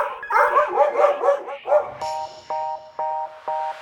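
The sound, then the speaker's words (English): A rapid run of high, yappy dog barks, several overlapping and fairly loud, then a string of short, evenly spaced electronic beeps. “Emery says their grandma has 4 dogs, so they want a robot to walk all of them.”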